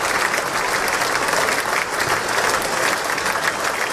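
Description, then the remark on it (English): A steady, dense wash of applause from a large audience in a room with President Trump and congresswomen, many hands clapping at once in a loud, continuous roar with no pauses and no one speaking. “That's a lot of clapping.”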